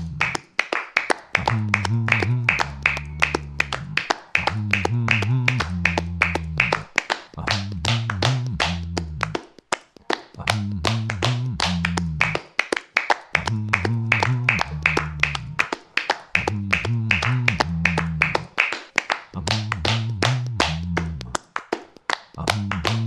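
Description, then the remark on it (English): Steady rhythmic hand claps, sharp and bright, repeating in quick even beats, with a low tuneful bass pattern pulsing underneath throughout. “Can you clap your hands?”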